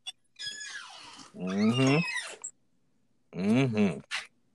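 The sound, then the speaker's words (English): A door swings open with a loud, drawn-out squeaky creak, wavering in pitch, then after a short pause a second shrill creak, clear with no talking. “I'm finna the loud ass door finna come because I got to charge his phone”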